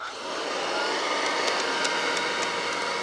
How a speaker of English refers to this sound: But a new plastic had been invented called Bakelite. So you begin to see Bakelite vacuum cleaners made after World War II. All right, so we'll run this one.